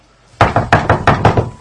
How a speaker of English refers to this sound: A huge bang on the door.